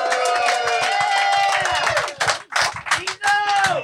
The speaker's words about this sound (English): Y'all did a fantastic job of clapping for a nigga you never saw before. I think that's beautiful.